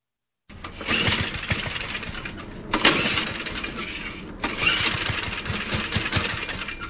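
A lawnmower engine sputters as someone tries to start it, with sharp pull-cord bursts and rough, uneven engine noise that catches briefly and then falters, fairly loud.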